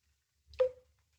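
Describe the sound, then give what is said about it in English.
A single drop of water drips someplace in the wall of a room in a narrow street in Edinburgh, Scotland: one short hollow plink with a brief fading tone, heard alone against near silence. “Someplace in the wall there was a drip.”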